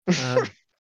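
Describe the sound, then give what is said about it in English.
A single short, voiced yawn from one person, fairly loud, with a breathy rising-then-falling tone lasting about half a second before silence. “I'm yawning here now.”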